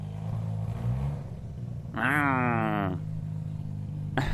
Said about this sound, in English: Big old Mustang car. Listen to that baby purr. I know that's coming up in the background, right?